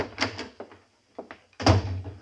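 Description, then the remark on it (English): The top drawer of a desk is pulled open: a few short wooden scrapes and rattles, a brief pause, then a louder sliding thunk as it comes out. No one speaks. “Look in the top drawer of the desk there.”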